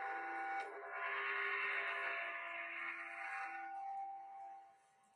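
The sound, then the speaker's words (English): A single gong stroke, a gong sound found on YouTube, blooms into a bright, shimmering metallic roar with sustained ringing overtones, holding strong for several seconds before fading away, with no voices present. “That was a gong that Tim just found on YouTube.”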